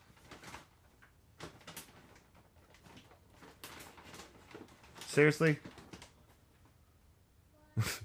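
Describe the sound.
Scattered soft knocks, taps and clunks of a cat walking across objects, irregular and fairly quiet, with a short spoken exclamation breaking in midway and a sharper bump near the end.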